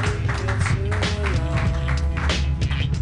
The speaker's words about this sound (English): Your next comedian, keep your hands a clapping, everybody.